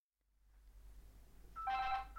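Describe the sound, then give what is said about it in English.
A telephone starts ringing early in the morning, one short, bright electronic trill near the end after a low, quiet background hum. No one speaks. “I hope you don't mind me ringing at this early hour.”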